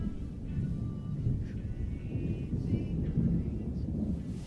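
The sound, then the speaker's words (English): A steady, low roaring rumble of storm wind, with deep thunder-like booming that swells and churns throughout, fairly loud with no voices. “This storm might just be the last nail in the coffin.”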